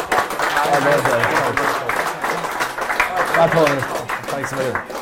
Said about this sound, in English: Folks, give them a big round of applause there.